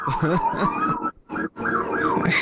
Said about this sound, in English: Here comes the ambulance.